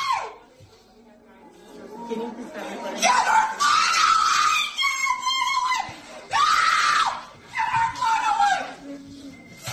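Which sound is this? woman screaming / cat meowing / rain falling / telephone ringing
woman screaming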